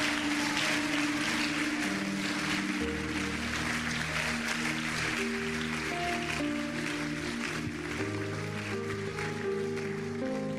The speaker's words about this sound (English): Palmas para o Senhor. Clap to God.